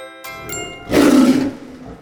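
A single loud tiger roar bursts out for about half a second, following a couple of bright chiming tones, then fades into a quiet tail.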